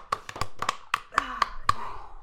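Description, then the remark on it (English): A handful of sharp, uneven hand claps from a small group, fairly loud, with a voice murmuring underneath; applause after finishing a tasting of ten hot sauces. “Round of applause for you guys, man.”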